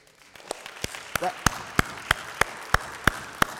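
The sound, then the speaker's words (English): An audience claps in a steady, even rhythm, about ten sharp claps in unison at a quick beat, with a brief vocal sound and low crowd murmur beneath. “That's good news. Somebody needs to clap.”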